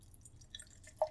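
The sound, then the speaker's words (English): Dark beer being poured into a glass until it is too full, quiet, with soft liquid trickling over a low background hum and one distinct drip near the end. No one speaks. “Wow, that is, like, too full. Yeah. And the pool.”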